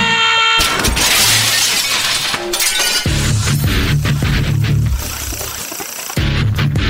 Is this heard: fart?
no